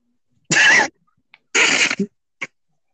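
Two short, sharp sneezes from a small pet animal, each a breathy burst followed by a tiny snort or sniff, with quiet gaps between them.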